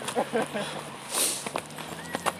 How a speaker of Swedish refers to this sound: Vi springer här rakt över järnvägsbron i Karis.